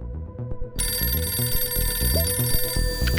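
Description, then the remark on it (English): After a short musical intro, a bright, metallic telephone bell starts ringing and keeps ringing steadily to the end, fairly loud, over a rhythmic low music bed. “And what you need to know is that for this week's spy, it all started with a phone call.”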